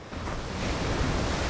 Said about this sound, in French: À Mimisan, les vagues sont hautes et fortes. Ça fait peur, mais c'est aussi super amusant.